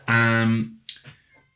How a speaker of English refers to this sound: Sorry if you can hear my cat, by the way. He's meowing at the door. He's having a good time. He's meowing at the door.